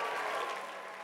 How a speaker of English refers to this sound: So I'd like to thank God for President Scott Hagan and his wife, Ms. Hagan. Can you give them a great big round of applause?